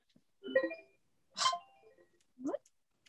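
A mobile phone gives off three short electronic beeps spaced about a second apart, each a brief bright tone burst, moderately loud with no talking over them.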